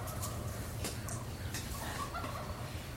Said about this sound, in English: The turkeys agree.